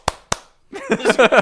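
Two sharp, loud hand claps about a quarter second apart, followed after a short pause by voices that sound like laughter.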